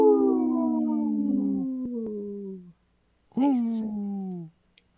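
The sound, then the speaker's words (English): Two long, mournful wolf howls, each sliding slowly downward in pitch: a drawn-out first cry, a short silence, then a briefer second howl. Fairly loud, with no talking. “This portion of the show is supported by Howling for Wolves, protecting wolves for future generations. Howl! Howl! Howl!”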